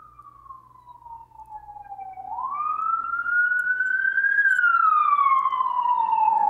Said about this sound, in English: My siren. Is that a fire engine? A Brooklyn fire engine or an ambulance? Mm-hmm. Can you tell the difference whether it's a fire engine or an ambulance or a police car at this point? No, I don't think so. Yeah. We live by a firehouse and a hospital.